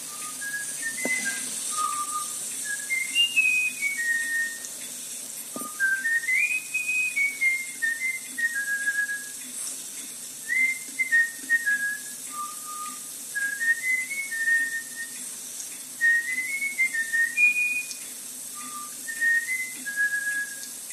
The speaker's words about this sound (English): Now the recording of the trainer whistling to the bullfinch.